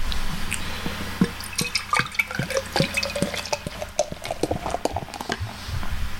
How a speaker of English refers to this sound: That's a pretty good, cool pour. Yeah, that's a good pour. Nice. I'm happy about it.